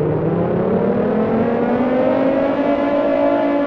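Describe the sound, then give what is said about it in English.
Motorcycle engines roar nearby, a loud steady drone whose pitch climbs slowly as they accelerate. No voices, just continuous engine noise throughout. “They hear the sounds of motorcycles, possibly a rival gang driving nearby.”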